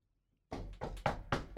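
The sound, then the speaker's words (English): Four quick knocks on a wooden surface, fairly loud, following a brief silence, with no talking. “You better knock on wood.”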